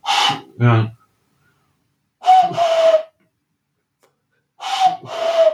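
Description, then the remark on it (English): A person imitates a cuckoo in a higher voice, giving two breathy two-note calls, each a bright hoot followed by a slightly lower one, separated by a pause, after a short vocal sound. “God, that really gets across the cuckoo's kind of slightly more aggressive style, doesn't it?”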